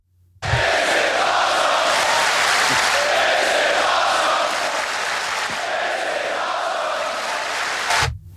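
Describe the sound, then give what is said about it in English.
A large wrestling crowd cheers loudly and steadily for about eight seconds, a dense roar with swelling voices rising and falling throughout before it cuts off abruptly. “I'd rather hear the cheers and the "this is awesome" than boos.”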